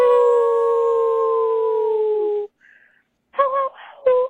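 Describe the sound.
A person howls like a wolf: one long, steady, slowly falling howl, a brief pause, then two shorter wavering yips.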